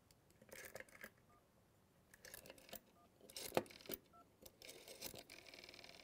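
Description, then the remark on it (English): Scattered taps on a phone screen, with a few brief, faint electronic beeps from a dialer keypad sounding at irregular intervals. No one speaks. “Do you hear the little beep?”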